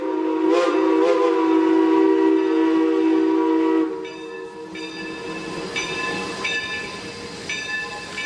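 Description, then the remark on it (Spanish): A loud, sustained train whistle blows for about four seconds as the train sets off again, then gives way to the clanking, hissing rumble of the train pulling away, with rhythmic metallic squeals and ringing tones. “En ese preciso momento se oyó un largo silbato, porque el tren volvía a ponerse en marcha.”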